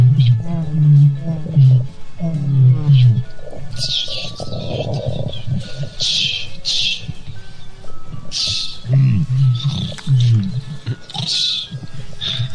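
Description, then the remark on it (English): Several people hold a growl-off, taking turns making low, rumbling growl noises with their voices into a microphone, imitating animals, the growls rising and falling in bursts with breathy hisses between them. “Growl off. Everyone starts growling.”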